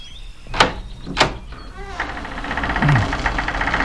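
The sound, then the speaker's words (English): Two sharp clunks, like a latch or handle being worked, are followed by a long, grinding creak as an old, unlocked castle door slowly opens, the strained groaning rising and wavering for about two seconds. “Oh, it's not locked. Feels like it hasn't been opened in centuries.”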